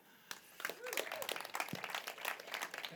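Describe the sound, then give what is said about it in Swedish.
An audience claps to welcome a guest onto the stage, in a loose, scattered patter for a few seconds, fairly quiet overall, with a brief rising voice or whoop mixed in near the start. “Bättre applåd.”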